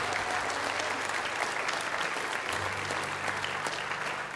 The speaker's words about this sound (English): Praise God. Could you give me a good hand clap of praise for our Lord Jesus this morning?